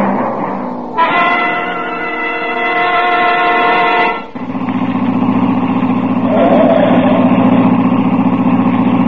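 Heavy traffic noise with a car horn honking in one long, steady blast for about three seconds, followed by the low, continuous rumble of idling and revving engines.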